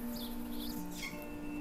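A few soft bird chirps come in short bursts in a forest canopy in the morning, over a steady low droning hum, with faint rustling texture in the background and no voices.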